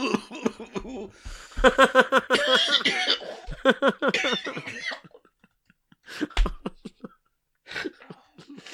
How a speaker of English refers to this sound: It's tickling my throat and it won't go away. It's a cough. I had it. It's not. It's a tickle. It's a cough. From this thing.